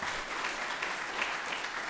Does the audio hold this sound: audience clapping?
yes